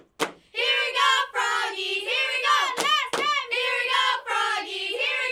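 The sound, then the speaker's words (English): The Cloverdale High School Eagles cheerleaders shout a rhythmic cheer for Froggy ("Here we go, Froggies") in loud, sustained bursts, punctuated by a few sharp claps between the chanted phrases. “All right, Cloverdale High School Eagles cheerleaders, if you're ready for a cheer, go for it.”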